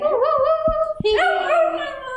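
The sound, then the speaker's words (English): Several voices howl together in long, wavering, overlapping wails, fairly loud, with a brief dip partway through before the howling swells again. No one speaks. “Should we howl?”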